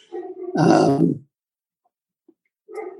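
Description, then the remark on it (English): The speaker's dog gives a loud, rough, drawn-out bark in the background, preceded by a lower vocal sound and followed by silence, then a shorter sound near the end. No one speaks. “My dog is barking in the background. Perhaps you can hear that.”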